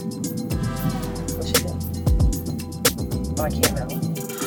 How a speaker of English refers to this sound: Okay, so... We're in the car and we're on the way back.